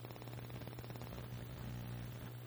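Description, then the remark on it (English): Steady electrical static hisses continuously over a low, droning mains hum, quiet but constant throughout, with no voices or other sounds. “It's static stuff in the background.”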